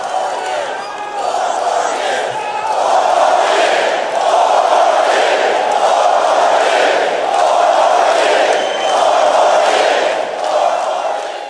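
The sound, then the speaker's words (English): A large, loud rally crowd in Mississippi chants "four more years" for President Donald Trump over and over in a steady rhythmic pulse, the roar of many voices sustained and echoing throughout. “And that was a tape of the crowd in Mississippi yelling, 4 more years.”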